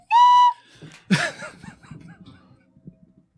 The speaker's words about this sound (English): I think the train is telling us to move on.